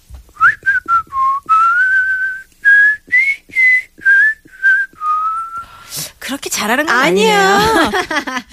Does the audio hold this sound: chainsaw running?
no